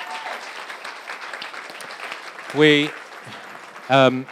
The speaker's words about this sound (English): Okay, why don't we stand? Why don't we stand? And just give these guys a round of applause. Just thank them.